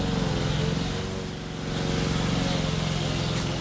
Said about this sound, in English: How New Zealand. A lawnmower at a distance is a beautiful thing on a grey Sunday afternoon. Did you record this yourself? Yeah. A few doors away. It's a lovely sound. On the wet grass.